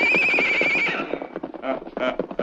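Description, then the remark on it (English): A horse gives a loud, shrill whinny for about a second, then its hooves clop in quick, uneven beats. “Get him on his horse. Move him along, boys.”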